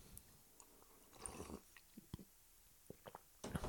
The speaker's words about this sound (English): Oh man, I'm just going to have a sip of coffee here. Hang on.